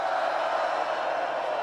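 A large festival crowd screams and cheers on a count of three, a dense, steady wall of many voices at moderate volume that holds without a break for the whole short moment.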